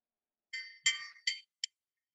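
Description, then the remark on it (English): A small meditation bell struck four times in quick, uneven succession, each bright, high metallic ring cut short rather than left to sustain, the last one the briefest; no voices. “Just like the sound of the bell, it comes and goes and settles on each on its own.”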